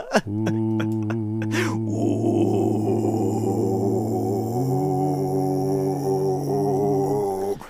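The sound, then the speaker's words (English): Several voices join in a sustained, low growling drone, imitating a chorus of wolves. The layered, harmonised tones hold steady for about seven seconds, shifting pitch once partway through, loud. “a chorus of low growls rose from the pack, and I just thought, oh, yeah, Gregorian wolf chants.”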